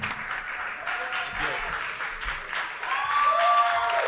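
A crowd claps steadily and densely throughout, with cheers and a few whoops rising over the applause, growing a little louder toward the end.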